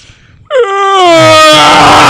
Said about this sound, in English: How about loud yawns.